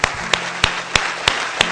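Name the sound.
audience applause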